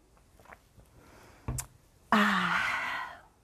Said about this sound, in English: Gonna take a quick sip of water before we dive in.